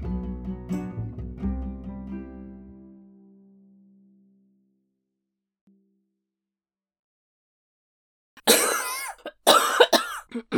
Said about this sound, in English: Now that you coughed, I feel like I should cough. I'm not even having a bad cough day.